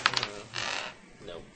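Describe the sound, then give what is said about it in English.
Dice clatter on a table: a quick cluster of sharp clicks, then a brief rattling roll that fades out within a second or so. “They're rolling high.”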